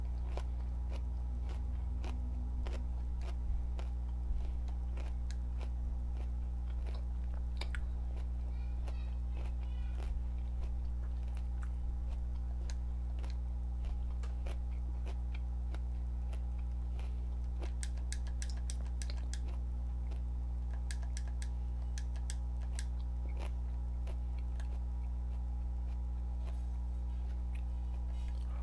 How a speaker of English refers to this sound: I sound like a horse when I'm eating.